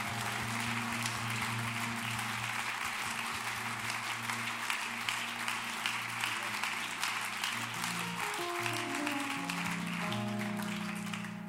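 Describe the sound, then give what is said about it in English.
An audience at a church service claps steadily and loudly for about eleven seconds as a hand clap to the Lord, a dense wash of many hands, while sustained low organ-like chords hold and shift underneath. “Come on, let's give that hand clap to the Lord tonight.”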